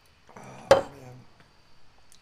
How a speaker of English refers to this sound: We're going to do a quick shot here. Little toast to our challenge. Get ready. Hopefully the first of many Fireball shots for us. Oh, boy. Clink it.